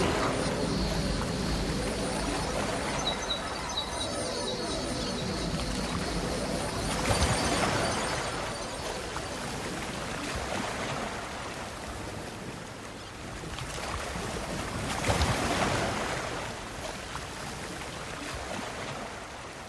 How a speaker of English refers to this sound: the morning waves were rippling under the bridge, and he couldn't see a thing.